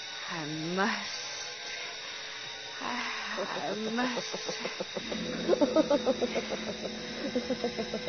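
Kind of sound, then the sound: animal, snake hissing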